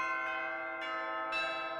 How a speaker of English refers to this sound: And so I should probably specify these aren't actually St. Stephen's bells. These are some bells, but they are medieval sounding.